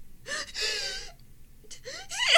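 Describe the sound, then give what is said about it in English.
A person demonstrates a reverse sneeze, an inhaled sneeze: two bursts of harsh, snorting inward gasps separated by a brief pause, the second rising to a rough, wheezy peak. “That's reverse sneezing, dum-dum.”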